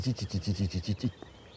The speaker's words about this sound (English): Well, that is a Setti's warbler.